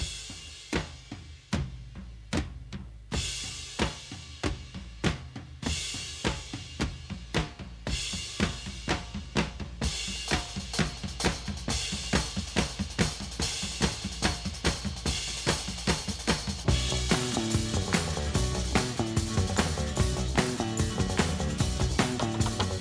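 Rock bumper music on the Rod Arquette Show, played as the radio show wraps up for the night before the news at the top of the hour. It has a steady, driving drum beat and full band, building in density and loudness toward the end. No one speaks over it.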